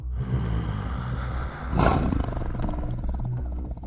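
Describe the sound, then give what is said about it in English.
A deep, rumbling growl from a great tiger pawing into a clearing rolls on for several seconds, loud, swelling briefly into a harsher roar midway before settling back into a low, sustained rumble. “A deep growl cut through the chatter as the large shape of the great tiger pawed into the clearing.”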